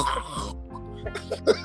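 A person makes an exaggerated, deliberate throat clearing: a raspy, rumbling vocal stretch followed by a few short guttural bursts, the last one sharpest and loudest, with no words spoken.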